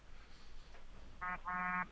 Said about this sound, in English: What the hell was that noise? Did your phone just vibrate? Oh, the phone vibrating.